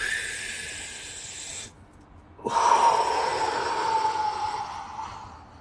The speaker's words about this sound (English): And I always find it really satisfying to breathe out on like a straw, or like imagining that you're blowing out over hot soup. Give that exhale some extended time. It feels good.